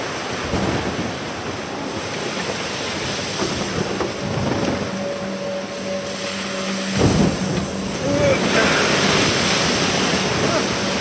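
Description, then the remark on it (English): Rough sea surf and wind roar steadily around a small rowing boat being rowed at night and taking on water, with water sloshing and surging and occasional heavier splashes; no clear speech stands out. “Keep rowing!”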